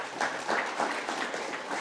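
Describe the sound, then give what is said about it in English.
An audience claps steadily, a dense, even wash of many hands at a constant loudness, with no voices standing out. “So we have also a lot of things to clap about.”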